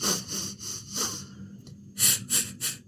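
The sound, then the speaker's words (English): Rhythmic, forceful breaths pushed out in short bursts during a breathing exercise, about eight strong airy exhalations with a brief pause midway, fairly loud with no talking. “Okay, so it's the reverse. It's breathing out.”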